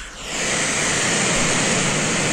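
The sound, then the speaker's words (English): Steady brown noise swells in over the first half second, then holds as a constant, dense rushing hiss, like a waterfall, loud and alone with no voices. “Here's brown noise.”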